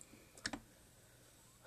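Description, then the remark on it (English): Two quick, crisp computer mouse clicks close together, like a double-click, made while adding online videos to a watch-later list, with no one speaking. “Sorry for you clicking, I'm just on YouTube putting videos into my watch later”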